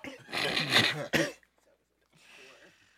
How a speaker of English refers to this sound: You done triggered it. The coughing. That's what we gonna call that shit. He's still coughing.